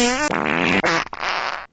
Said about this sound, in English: Now, listen to some fart noises.